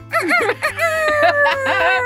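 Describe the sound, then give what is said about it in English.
A person mimics a rooster's crow with their voice, a loud, drawn-out warbling call that rises and wavers, delivered alone without any spoken words. “I'm pretty sure that's a rooster.”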